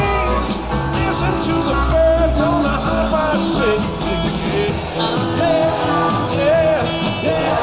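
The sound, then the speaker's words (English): A crowd yells and cheers throughout a loud, dense live music performance, the voices blending into a continuous roar over the band with no quiet moments. “Hear people all yelling, yeah?”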